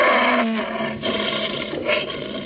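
A captive lion at the palace of Sayyid Khalif in Zanzibar roars loudly, a deep, rough, sustained roar that swells and surges for a couple of seconds with no talking.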